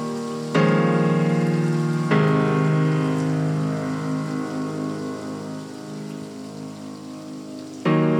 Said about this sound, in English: And it ends super abruptly, and then the storm begins.